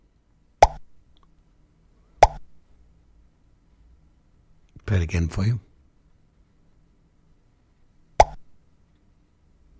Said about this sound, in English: Yes, when you put your finger in your mouth. Oh, I did it then. That sounded really good. Yeah, it's popping. Popping with your cheek in your mouth.